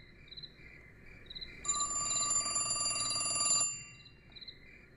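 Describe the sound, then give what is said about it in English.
A telephone rings in one sustained burst of about two seconds, bright, with faint chirping insects in the quiet background before and after. “As soon as I answered the phone, she would start screaming.”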